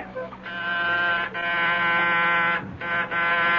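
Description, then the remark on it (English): A door buzzer at apartment 10B of a luxury high-rise at 98 St. Regis rings in a few long, harsh bursts separated by brief breaks, a loud, steady, raspy electric tone with no voices over it. “Who is ringing?”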